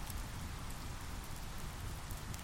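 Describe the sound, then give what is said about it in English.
Heavy rain pours steadily onto surfaces, forming small puddles and streams running towards a lake; a dense, continuous hiss with a low rumbling undertone and scattered brighter droplet taps, unbroken throughout with no voices. “The rain is heavy now, sheets of sparkling droplets forming small puddles and streams towards the lake.”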